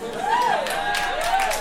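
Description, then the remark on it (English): A crowd bursts into steady applause at the mention of the 1995 film It Takes Two, a dense wash of clapping lasting under two seconds, with a few rising and falling whoops or cheers riding over the top. “Sorry, that is the biggest applause that movie's ever gotten.”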